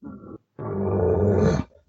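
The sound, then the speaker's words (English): A bull elk gives a short, gruff alert call, made when it has heard a hunter, then after a brief pause a longer, loud, throaty bellow that rises in pitch near its end. The sound is clear, with no talking. “If I hear that, he knows I'm there. He got me. He heard me”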